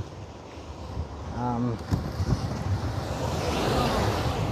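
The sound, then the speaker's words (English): A truck roars past close by outdoors, almost running over the person recording, a broad rushing rumble that swells and stays loud to the end, mixed with heavy wind buffeting and a brief tonal sound early on. “Truck almost ran me over.”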